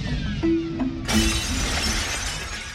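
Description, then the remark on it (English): A window of a house shatters as an object slams through it, a sudden loud crash about a second in, followed by a bright, hissy spray of falling glass shards that slowly fades over a low rumbling background. “And I think will actually break a window of the house as it slams through the wall.”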